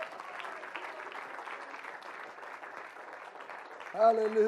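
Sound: audience applauding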